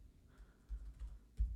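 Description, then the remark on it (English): Soft, irregular clicks of someone typing on a computer keyboard, a few quick keystrokes heard faintly, with a slightly firmer tap near the end and no voices. “You folks can hear me typing. Click clack.”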